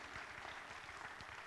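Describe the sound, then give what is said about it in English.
A church audience applauds the fill-in percussionist, a dense, steady wash of many hands clapping at once with no voices over it, holding an even, moderate level throughout. “Give him a round of applause, if you will.”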